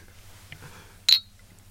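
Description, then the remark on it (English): A single bright clink of glasses touching in a toast, sharp, with a short high ring that fades quickly against a quiet low background hum. “Cheers.”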